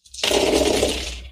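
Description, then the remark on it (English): A handful of dice rattles and clatters across a hard table, a dense burst of small clicks lasting about a second, fairly loud with no voices. “That's a lot of dice.”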